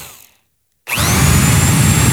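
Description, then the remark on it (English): A power drill snaps on after a moment of silence and whines steadily at full speed, loud, its motor pitch sliding slightly as the bit bores into a hot dog. “Okay, that's enough drilling.”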